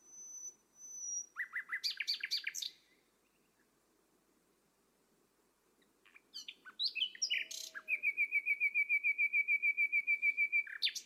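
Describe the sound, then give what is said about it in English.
A nightingale sings alone in two bursts of varied, high chirps and trills, ending in a rapid, loud repeated note series, with a faint background hum between phrases. “Whenever people ask me why I play music with nightingales, I quote them these lines from the Persian poet Sadi.”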